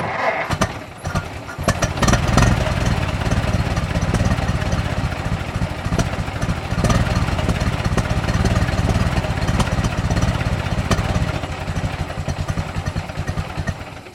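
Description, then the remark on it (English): A loud internal combustion engine roars continuously, its rough, rapid firing pulses mixed with rattling clatter, holding steady for the whole stretch before easing slightly at the end. “On any given day, you could hear a roar just about anywhere.”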